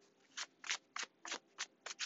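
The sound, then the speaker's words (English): A deck of tarot cards being shuffled, a quick series of about seven crisp, papery riffles in an uneven rhythm, with no one speaking. “I am shuffling the tried and true Taramucha.”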